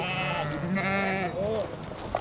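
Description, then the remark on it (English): A flock of sheep and goats bleating together, several wavering, overlapping cries running continuously with fairly steady loudness and no talking. “the sheep herder, uses his lasso to catch one of the goats by the horns.”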